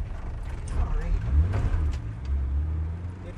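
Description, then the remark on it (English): Steady low rumble of cars moving through busy city traffic in Kampala, with occasional mechanical clunks and creaks and faint indistinct voices in the background. “And with that, you get a lot of cars, various forms of transport.”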